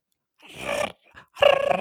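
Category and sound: vocal imitation, voice imitating crickets chirping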